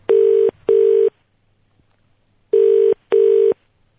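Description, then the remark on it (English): A telephone ringback tone sounds as a call is placed to a listener, in two loud double-ring pairs, each pair of short electronic buzzes separated by a pause, with no one speaking. “I would like to receive a random phone call from you, as I think I have one of the best questions you have ever heard.”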